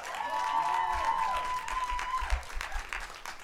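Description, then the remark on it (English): A crowd in Montreal applauds steadily for comedian Bobby Lee, dense clapping filling the whole stretch with a few louder bursts and a faint whistle-like tone early on, lively throughout. “Ladies and gentlemen, big round of applause for the one and only Bobby Lee.”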